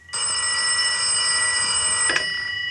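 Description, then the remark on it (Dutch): An old-fashioned telephone bell rings continuously, a loud, steady metallic trill, with no voices over it. “Die liet gewoon zijn dochtertje de telefoon opnemen.”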